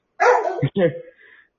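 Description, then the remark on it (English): A dog barks twice in quick succession, fairly loud, the second bark trailing off into a softer, drawn-out whine. “Give that dog a combo or something.”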